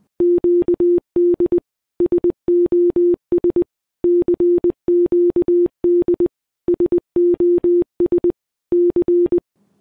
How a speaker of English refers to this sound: Each letter in the Morse code alphabet is expressed as a set of only two signals. Or it's binary. And with just those two beeps, we can say anything. Like the distress call sent out by Titanic in 1912.